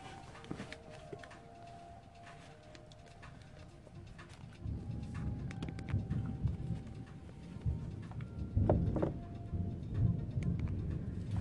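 thunder rumbling

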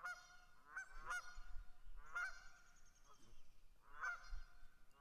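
geese honking

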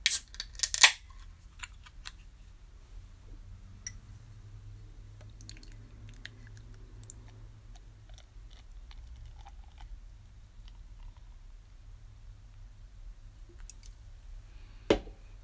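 beer poured

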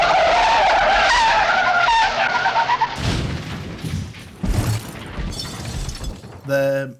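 car crash sound effect

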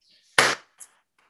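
hand clapping

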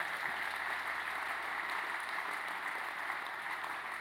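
audience clapping

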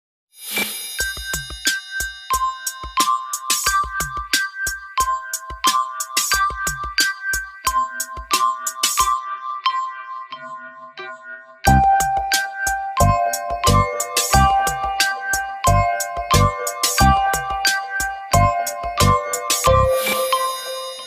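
telephone ringtone

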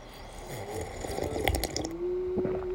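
sipping hot coffee

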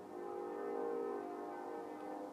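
train horn honking

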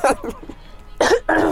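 cough

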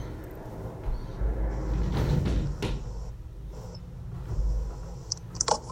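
window being closed

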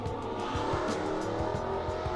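car engine revving outside

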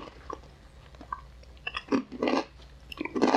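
chewing crunchy snack

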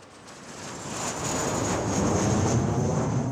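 airplane flying overhead

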